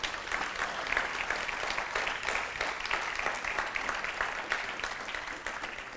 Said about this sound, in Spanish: ¿Qué tal si le damos un aplauso ahí al Señor?